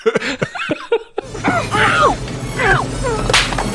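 slap across the face

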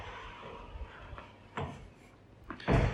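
door being opened

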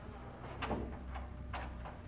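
door being shut

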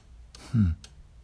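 cuckoo clock ticking

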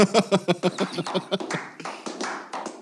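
clapping

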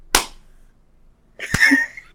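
a single hand clap

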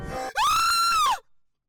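a person screaming

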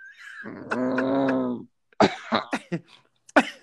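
person coughing

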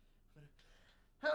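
sneeze

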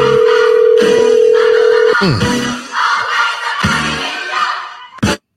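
telephone call ringing

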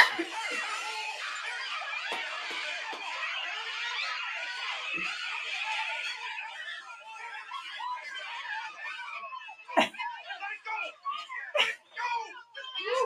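dogs barking

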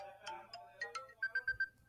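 phone alarm ringtone

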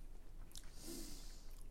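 people chewing food

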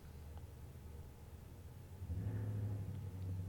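cars passing by outside

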